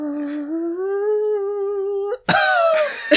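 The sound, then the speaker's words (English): A long, steady droning vocal tone holds for about two seconds, then breaks off into a loud, rough cough with a second, smaller cough right after it. “The cough of ennui at the end.”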